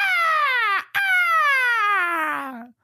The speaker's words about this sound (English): Is that the eagle noise? Yeah. Oh, I was like, what the hell is that?